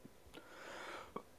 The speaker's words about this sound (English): Lingering fucking cough still.